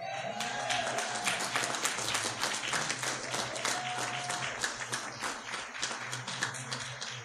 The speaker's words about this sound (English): So I just want you to know what that applause was for.